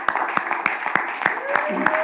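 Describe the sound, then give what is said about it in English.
A crowd claps hands in praise to God in a steady, even rhythm, about three claps per second, with voices murmuring and calling out beneath the beat. “Let's clap our hands unto him again.”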